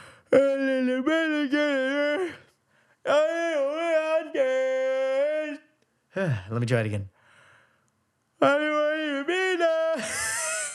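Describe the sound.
A voice imitates a singer's singing style in drawn-out, sagging, yawn-like wails that sound like crying or yawning, delivering several sustained wavering phrases separated by short pauses, with a brief spoken remark in between; fairly loud.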